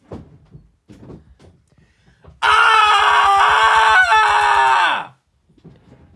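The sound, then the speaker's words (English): A person lets out a loud, sustained scream lasting nearly three seconds, strained and raw, imitating a comedian's stand-up routine of yelling into a microphone, then trailing off with a falling pitch amid quiet background murmurs. “Can I do a recreation of his stand-up?”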